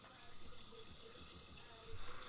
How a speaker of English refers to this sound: I'm listening to the vino being poured, sounding deliciously spirited. Hold on, hearing the grapes.